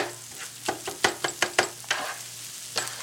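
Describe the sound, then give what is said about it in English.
A plant-based dish seasoned with adobo and sazon sizzles steadily in a hot pan while a utensil scrapes and stirs in a quick, irregular series of clacks, moderately loud, with no one talking. “Cooking!”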